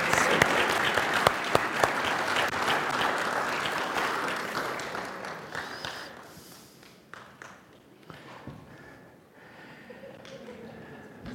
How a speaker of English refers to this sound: You can give them another round of applause if you want.